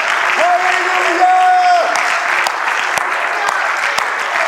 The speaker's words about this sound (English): Yeah, let's clap our hands for that, shall we?